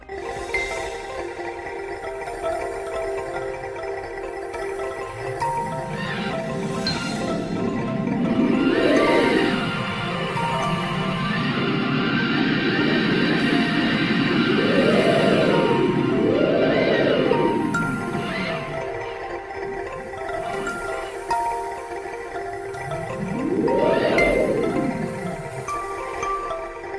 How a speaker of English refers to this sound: The X-rays from Chandra, which reveal a shockwave that has a superheated gas to tens of millions of degrees, are represented by a synthetic string sound. Personally, I think it sounds a lot like birds.